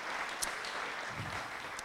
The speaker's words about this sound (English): And then let's have our entrepreneurs stand up and face the crowd. And would you please all give them a warm round of applause.